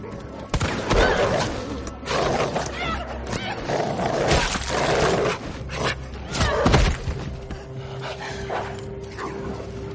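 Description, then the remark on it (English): A zombie dog in the video game Resident Evil 3 remake attacks the character Jill with loud, frantic snarls and harsh barks in rapid, overlapping bursts, mixed with sharp crunching impacts, then a brief calmer tail near the end. “And here's a better sound of one of them attacking Jill in the Resident Evil 3 remake.”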